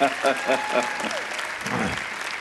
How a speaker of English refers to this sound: Our church would like to give you a good victory welcome, so hear the hands clapping.